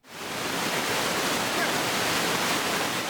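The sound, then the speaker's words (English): A steady, full roar of rushing water from BX Creek and its falls along the BX Creek and Falls Trail in Vernon, continuous with no breaks, filling the scene from start to finish without any voices. “a hike along the BX Creek and Falls Trail”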